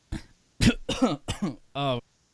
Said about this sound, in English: Yeah, I don't know why I started talking and then started coughing all at the same time.